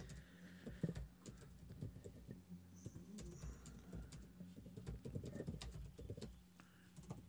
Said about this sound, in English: If you hear me typing, people, it's because I'm pretty much taking notes.